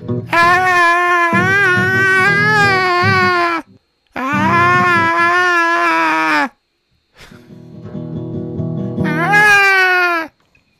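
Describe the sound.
A voice mimics wild, screechy singing in three long, loud wailing bursts, high and wavering like a yowling cat, with brief pauses between them and no instruments.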